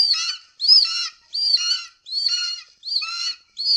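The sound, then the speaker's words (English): Harsh, high-pitched bird screeches repeat in rapid bursts, about six calls in under four seconds, loud with no talking: a movie sound effect of killer birds attacking, at their first appearance in the film. “This is when you first hear the birds. So you'll get a glimpse of what the sound effects are like.”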